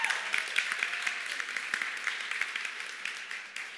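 A crowd claps steadily in dense, overlapping applause that holds at a fairly even level for a few seconds, then begins to fade slightly toward the end.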